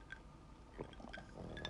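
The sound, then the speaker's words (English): Large 2-inch ice cubes knock against a glass of water as someone drinks, giving a few light, scattered clinks over soft sloshing liquid. Quiet, with no talking. “I'm drinking water with my new giant ice cubes in.”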